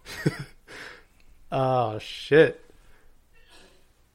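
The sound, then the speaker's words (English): A single sneeze, a quick sharp burst with a breathy, hissing tail, followed by a short exclaimed reaction from a voice. “Bless you.”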